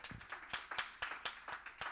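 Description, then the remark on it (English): A church audience clapping their hands to give God praise in a steady, rhythmic beat, about four sharp claps per second layered over a crowd's scattered applause, moderately loud with no talking. “Somebody clap your hands and give God praise tonight.”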